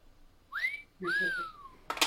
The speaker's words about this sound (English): That was a bird.